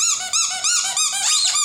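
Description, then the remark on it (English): A quiz buzzer used in a quickfire round gives a rapid run of five or six short, high, squeaky toots, then one longer squeal that rises and falls. Fairly loud, with no voices. “Because this round is quickfire, we need buzzers. So, Tom and Bridget, those are yours.”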